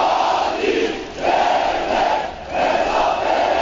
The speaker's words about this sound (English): Large crowds have gone to the scene of the blast to pay tribute to the dead.